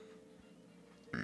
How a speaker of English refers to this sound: Oh, I was trying not to let that burp out.